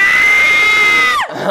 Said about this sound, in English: give him a scream.